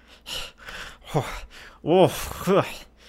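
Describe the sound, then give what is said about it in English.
A voice imitates grunting and heavy breathing: several breathy exhalations and gasps, then two louder, strained vocal grunts with rising pitch sweeps, fairly loud. “And you start to hear some grunting and heavy breathing.”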